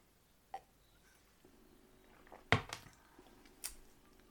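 Someone sips a drink of water, with a soft slurp, a louder wet gulp midway and a small swallow after, all quiet with no talking.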